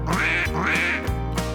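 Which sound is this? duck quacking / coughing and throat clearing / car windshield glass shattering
duck quacking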